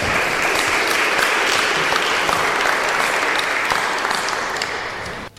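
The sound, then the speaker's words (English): Sustained audience applause for a poet at the 100,000 Poets for Change event held at the Spire, a dense, steady wash of many hands clapping at an even loudness for about five seconds before it cuts off abruptly. No voices stand out. “Let's give them another hand.”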